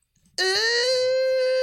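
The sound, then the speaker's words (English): A person imitates a wolf-like howl in a howling contest, with one loud, sustained, high-pitched vocal tone that swells in abruptly after a brief quiet moment and holds steady, rising slightly in pitch. “Whoever has the best howl wins.”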